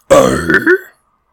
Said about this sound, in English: It's based on clearing your throat. If you go, that grit is your false chords coming together.